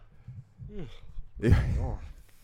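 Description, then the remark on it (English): A person lets out a drawn-out yawn, a breathy inhale swelling into a wavering voiced groan, preceded by a faint murmured vocal sound. “You just yawned.”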